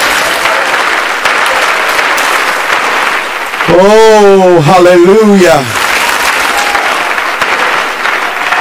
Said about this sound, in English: Can you clap your hands to the Lord right now? Can you clap those hands a little bit louder with expectancy?